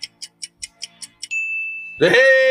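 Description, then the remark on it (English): Seven quick, evenly spaced ticks lead into a clear, sustained electronic ding from a phone app, followed by a sudden louder burst of rich, buzzy sound near the end. “You should probably read them because I'm sure that ding.”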